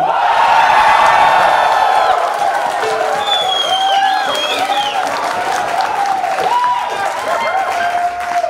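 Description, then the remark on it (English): A live audience cheers and whoops loudly and steadily to vote for the entry Good Boy in a contest. Shrill whistling calls rise over a dense wash of crowd noise and scattered clapping for several seconds. “Okay, if you want Good Boy to win the loogie, cheer now.”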